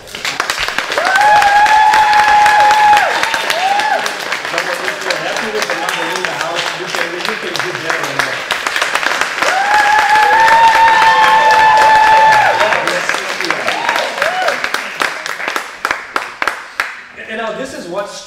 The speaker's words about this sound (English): And so I want you at this moment with me just to give a big clap for my wife.